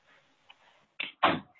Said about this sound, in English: Sorry, give me one second. I'll close the door.